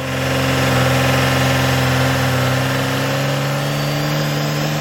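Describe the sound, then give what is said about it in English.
A diesel engine runs steadily, a deep, continuous rumbling drone with a constant low hum and no voices, holding at an even level for the whole few seconds. “Now, these are some of the crazy things that people are doing with their diesel-powered vehicles.”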